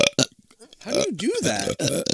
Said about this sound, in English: Can you burp on command?